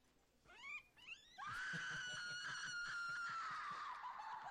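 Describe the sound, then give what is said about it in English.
Two short rising mews give way to a loud, sustained kitten screech that holds steady for several seconds, shrill, with no talking. “You monsters, why would you want to kill a poor defenseless little kitten?”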